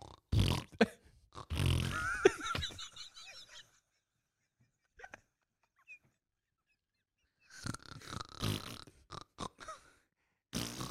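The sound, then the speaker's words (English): Voices imitate a fellow airplane passenger's rude bodily noises: raspy, grunting snore-like sounds and sputtering fart imitations in loud bursts, separated by a quiet pause, then another noisy round. “Wait, you do the snores, I'll do the farts.”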